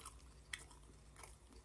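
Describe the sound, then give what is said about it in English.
Someone chews beef with sauce right up against the microphone, with wet, sticky smacks and crunchy bites coming in a few irregular bursts over a low, steady background hum. Nobody speaks. “Let's just try and chew this.”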